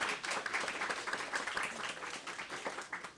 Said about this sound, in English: So, round of applause.